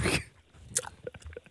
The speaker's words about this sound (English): I was trying to chew fast. My jaw's getting a workout.